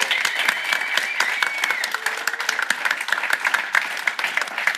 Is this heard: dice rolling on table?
no